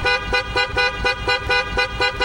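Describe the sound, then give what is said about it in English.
Car horns honk loudly and repeatedly in a steady, rapid rhythm, about eight blasts in two seconds, with no voices over them. “There's a lot of horn honking going on there, and I know some folks can be triggered by honking horns.”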